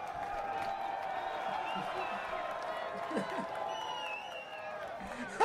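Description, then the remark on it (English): A steady wash of crowd applause and cheering as a guest is brought on, with voices whooping over the dense clapping at an even loudness throughout, and a brief sharper burst at the very end. “Hold on, we need the applause.”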